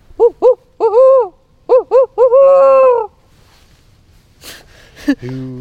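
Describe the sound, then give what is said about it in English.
A person's voice imitates a barred owl in a small forest on Bainbridge Island, west of Seattle, hooting loud rhythmic bursts: two short hoots, then a longer run, repeated in a second phrase that ends in a drawn-out descending call. “suddenly belts out the best barred owl call for me”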